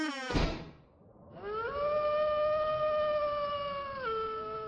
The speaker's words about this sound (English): I'm going to pass it through the old creaky door, and there's going to be a sound effect that's going to be really impressive.